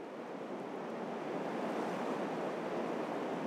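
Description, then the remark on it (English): Steady rushing of the flowing Colorado River in Arizona, just downstream of the Lake Powell dam, with a breath of wind outdoors, a constant broad hiss that holds even throughout, moderately loud, with no voices. “That's why I've made this trip to the Colorado River in Arizona.”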